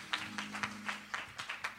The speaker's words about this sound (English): Come on, clap your hands for just a second and give our God praise.